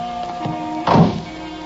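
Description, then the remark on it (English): A car door shuts with a single dull, heavy thunk, heard over a steady low engine hum with no voices. “Get in the car, Dan.”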